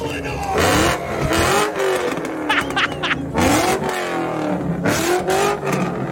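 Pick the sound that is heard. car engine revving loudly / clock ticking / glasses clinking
car engine revving loudly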